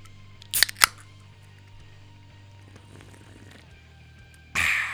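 A real diet soda can is cracked open: two sharp metallic clicks of the tab, then a quiet pause and a brief burst of fizzy hiss at the end.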